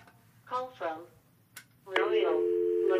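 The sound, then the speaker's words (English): A telephone in a studio rings with a loud, steady electronic trill that starts partway through and holds to the end. It is preceded by two short voiced bursts against a quiet background hum. “This is the phone on my studio ringing.”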